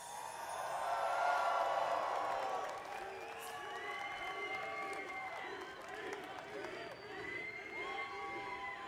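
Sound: audience applause and cheering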